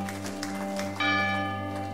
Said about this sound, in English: And then we're going to celebrate. Hear that bell, we ring that for you.